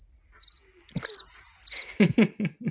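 Crickets chirp in a steady, shrill high trill for about two seconds, with a brief gap partway through, then cut off and give way to a few short, low bursts.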